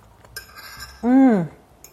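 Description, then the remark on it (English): Two light, bright clinks of a fork against a plate of croquettes with hot and sweet tomato chili sauce, one early and one at the end, with a short falling vocal hum in between. “that I'm going to liberally pour and get myself a fork. I cannot wait to dig in.”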